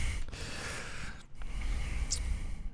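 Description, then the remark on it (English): Heavy breathing right into a microphone makes a rough, windy rush of air that keeps going, with one short break partway through. No one speaks. “You're breathing into the microphone there,”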